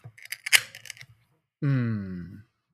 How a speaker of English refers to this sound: Yeah, I'm ready to crack this can open and give it a shot here, see what Florida man has to offer. And just for the beer fans out there, this clocks in at 80 IBUs and 8.5%. Yep, fairly bitter. Let's give it a crack.